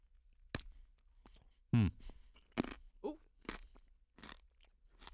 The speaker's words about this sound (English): I'm going for the crunch. Here we go. That's Wendy's crunch. That's really crunchy.